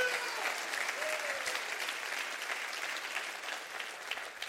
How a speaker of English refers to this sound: Clap your hands and rejoice to that right now.